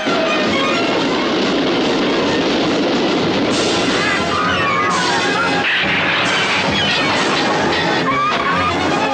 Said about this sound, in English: Where was this train originally heading? It is now the Orient Express.